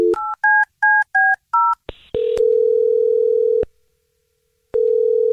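A woman's phone number is dialed with a quick run of about six touch-tone beeps, followed by a short burst of noise and a loud, steady dial tone that cuts off, pauses, then returns. No voices.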